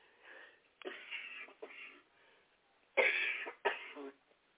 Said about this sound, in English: Excuse me, I still have a cough.